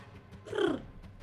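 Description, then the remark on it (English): A person's voice makes one brief, low cooing sound, an attempted purr that comes out more like a dove, gently falling in pitch and fading after about a third of a second. “I was trying to purr, but it sounded more like a dove.”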